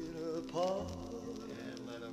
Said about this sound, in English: I like the crackling on the vinyl. Right? That's a nice touch. That's authentic. That's in pretty bad shape. That's the RCA Victor.